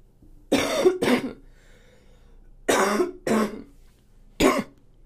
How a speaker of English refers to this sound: I'll just cut out the coughs if I have time. If I don't get too bored.